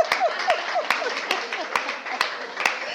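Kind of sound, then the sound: crowd, audience applause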